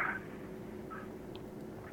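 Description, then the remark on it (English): A steady, low electronic buzz hums continuously over a phone line as people try to call in, fairly quiet, with a couple of brief faint chirps and no one talking. “This buzzing, it's people are trying to call either you or me.”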